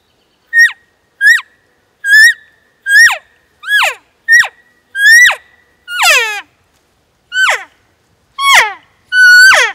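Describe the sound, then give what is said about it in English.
A series of about a dozen elk calls, mixing cow calls of different pitches with calf calls: high, nasal mews that squeal and slide downward, some short and others longer and higher, repeated at an uneven pace with no talking. “So you want to mix the cow calls with the calf calls.”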